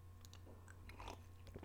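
A quiet sip of room-temperature coffee from a cup, with small wet mouth clicks and a soft slurp and swallow over a low steady hum, no talking.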